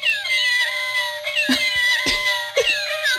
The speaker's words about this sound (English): Meow, meow, meow, in case you couldn't quite make out right, the right. Electronic noise emanating from this tie, which is not mine, to be clear.